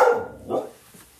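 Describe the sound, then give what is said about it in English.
A dog named Wrigley barks twice in quick succession, a sharp mid-pitched bark followed by a slightly softer, lower one, with no one talking over it. “That's Wrigley chiming in.”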